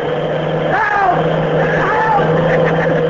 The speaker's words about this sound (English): A cross-country bus. Cop, go ahead and yell. Yell your heart out. Try to out-yell that motor.